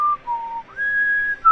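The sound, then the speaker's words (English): A clear, pure whistled melody in a song, moving through a few sustained notes, stepping down and then up to a long held high tone, heard alone. “But just, I love the melody of this one. And then the whistling and the...”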